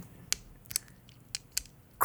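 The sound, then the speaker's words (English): Foley of a key unlocking a small door: a few sharp, bright clicks and small metallic scrapes come in an irregular sequence as the key jiggles and turns in the lock, ending in a slightly fuller rattle. No one speaks. “And it's can I get some Foley work on the key unlocking?”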